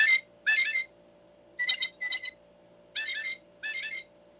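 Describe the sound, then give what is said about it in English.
Recorded American bird song plays from a small electronic speaker in a device, triggered by pressing its sensor button: three pairs of bright, tinny chirping phrases separated by short pauses, over a faint steady hum, with no talking. “And if I want to, I can press the button multiple times, and there are 8 American bird sounds or songs that you can listen to.”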